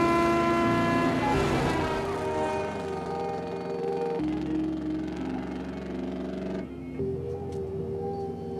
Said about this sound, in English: No, no, there's a car.